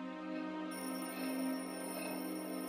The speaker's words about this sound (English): Your orb is ringing. Ah! A message from the boss.